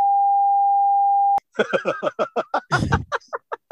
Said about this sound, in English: I'm not going to say the name. I'll bleep the name.